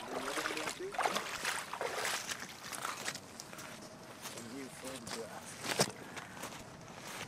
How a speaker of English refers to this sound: I'm on the river today, the Wollastook, with descendants of the original boat builders. The canoe is so large it has to be dragged to the water.